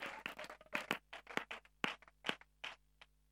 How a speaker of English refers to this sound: If you believe in your life, put your hands together, give a clap offering to the Lord.